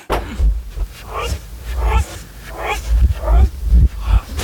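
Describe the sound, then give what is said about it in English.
A dog barks over and over in quick, rough bursts, loud, with a deep rumbling undertone throughout and no clear talking. “Barking.”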